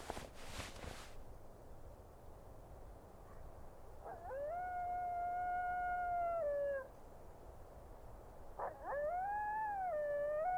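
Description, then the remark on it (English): Two long, wavering coyote howls at night rise and hold steady, then trail off, the second following after a short pause. They carry clearly over a quiet, faintly hissing outdoor background at a tent camp in the open among shrubs, with a brief rustle at the start. “Man, listening to the coyotes sent a shiver down my spine.”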